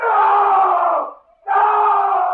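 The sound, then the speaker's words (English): Two long, loud screams coming from the house, each held for over a second with a brief break between them. They are harsh and strained, with no talking alongside. “You hear that scream, Jessup?”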